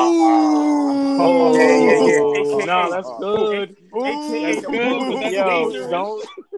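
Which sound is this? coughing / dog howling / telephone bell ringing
dog howling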